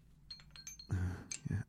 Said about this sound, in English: Goddamn you bells.